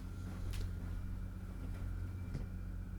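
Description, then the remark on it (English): A steady, low car engine rumble idles continuously outside, somewhat muffled, with a few faint clicks and ticks over it and no one speaking. “Why is there a car idling outside?”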